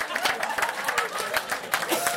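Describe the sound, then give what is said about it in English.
A crowd applauds audience members from Sheffield in a steady, dense patter of overlapping claps with a murmur of voices mixed in, holding at a fairly even level for a couple of seconds. “Come on, round of applause for Sheffield.”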